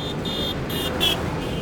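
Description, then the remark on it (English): A huge SUV rumbles along in street traffic, cutting in front of a cyclist, a steady low engine drone with a faint rise in loudness near the end, with no voices. “As I cut across to Brunswick Street, an aggressive man in a huge SUV cuts in front of another cyclist,”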